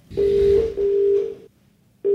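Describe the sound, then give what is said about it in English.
A steady electronic ringing tone sounds in repeated pulses over a phone line, two long rings with a short break between them, then a pause before the next ring starts, as a call is placed to Fuse Consultancy Services on Stockwell Road in London. “Here we go, we're going to call them now, listeners.”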